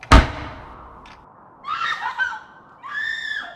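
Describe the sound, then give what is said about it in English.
A heavy house door slams shut with one loud bang and a short ringing decay, followed by two drawn-out, shrill, scream-like wails. “The door continued to open and shut, this time with more thundering claps.”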